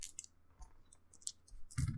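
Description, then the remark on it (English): A handful of dice clatters across a hard surface: a quick series of small clicks and rattles, ending in a louder final tumble, with no voices. “I roll lots of dice.”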